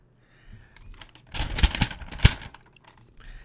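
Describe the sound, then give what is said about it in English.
Crinkly paper rustling, a burst of crackling handling noise with a few sharp snaps in the middle, then quieter shuffling fading out. No one speaks. “Are you using paper?”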